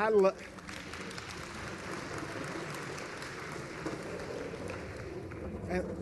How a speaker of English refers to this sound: Thank you. And that's not a clap for us. We're hoping to create a thirst in you to spend time with others of like precious faith and hash these things out.